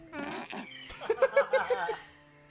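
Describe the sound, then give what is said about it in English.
A brief harsh squawk in a forest gives way to a loud, wet, squirty fart that sputters in a quick series of five or so bursts before trailing off, with no talking. “An ominous squawk pierces through the forest, followed by a squirty fart noise.”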